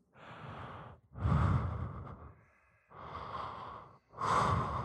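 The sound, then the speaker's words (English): A voice imitates heavy breathing: four long, raspy breaths alternating inhale and exhale, fairly loud, with no talking. “Just heavy breathing.”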